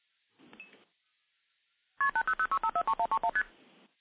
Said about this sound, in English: So we hear some MF digits, and now we'll hear constant ringing. The ringing will eventually time out, and you can actually seize the trunk at any point.